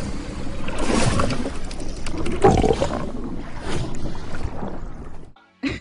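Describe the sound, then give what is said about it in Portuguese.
A voice imitates a piranha burping underwater: a long, loud, gurgling and bubbling rumble with a raspy roar in the middle, cutting to a brief silence before a short final burst. “Ai, com som de arroto na água.”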